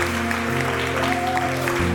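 A church audience cheers and stomps during an altar call in a dense, continuous roar of crowd noise, with sustained organ-like music tones running underneath throughout.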